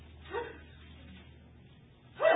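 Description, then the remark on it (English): A short, sharp sneeze bursts out loudly near the end, preceded by a softer, brief breathy sound and low background murmur, with no talking. “Bless you.”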